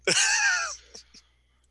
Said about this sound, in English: He coughs.